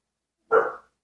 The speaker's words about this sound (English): Oh, I'm just going to stop and let the dogs bark.